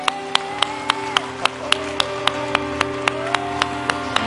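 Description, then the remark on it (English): An audience claps their hands to Jesus in worship in a steady, even beat, sharp crisp claps in unison over a sustained low musical drone, with no talking. “I want you to clap your hands to him now.”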